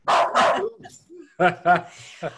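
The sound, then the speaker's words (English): A pet dog barks sharply several times in quick bursts, loud, with a short pause between two pairs of barks and a softer yip at the end, upset by a knock at the door. “Our dog does the same thing.”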